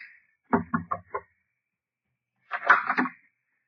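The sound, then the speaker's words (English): A captain gives four quick, evenly spaced, solid knocks on a door, then a short pause before a brief muffled burst of sound. “Captain knocked.”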